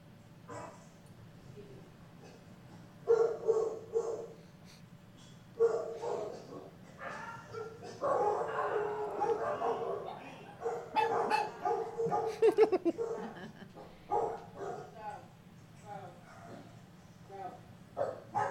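Dogs, including Puccini, bark in sharp, overlapping bursts, fairly loud, correcting a dog that came to sniff, building into a dense flurry of barks, yips and growly snaps before tapering off into scattered, quieter barks.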